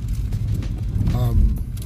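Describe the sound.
Steady low engine and road rumble inside a moving car, with faint, irregular swishing sweeps of the windscreen wiper, plus a brief voiced murmur midway.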